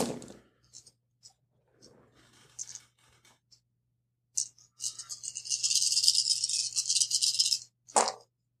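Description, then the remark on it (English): Nine dice rattle and clatter briefly for a physique roll, then a longer burst of shaking in a cup, followed by a sharp tumble as they spill out. Fairly loud, with no voices. “So that is 9 dice.”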